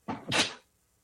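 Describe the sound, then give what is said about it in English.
A single sneeze into a t-shirt, a quick sharp inhale followed by a burst of breathy noise, muffled by the fabric, then quiet. “That said, as far as you know the whole DraftKings part of it goes, I am a little bit about to sneeze.”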